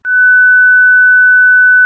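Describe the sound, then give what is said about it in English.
A single pure sine-wave note held steadily for about two seconds at a high, unwavering pitch, loud and clean with no overtones or other sounds, ending abruptly. “Obviously, a human voice doesn't sound like the note I just played.”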